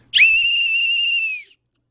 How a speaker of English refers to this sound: This whistle fights the terrorists.